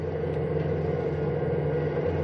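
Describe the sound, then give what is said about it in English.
A bus engine rumbles steadily on the road late at night as the bus nears a narrow bridge, a deep, continuous drone with a low harmonic hum that holds constant throughout, moderately loud, with no voices. “Paul Gebbish drives the same route. It's late at night. The bus nears a narrow bridge”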